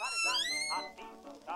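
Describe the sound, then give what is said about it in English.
A voice imitates a high-backed office chair by a large wooden desk in a collegiate office swivelling around: a drawn-out, creaky squeal that rises and wavers in pitch, followed by a few shorter squeaky glides, fairly loud and alone. “Chair swivels around.”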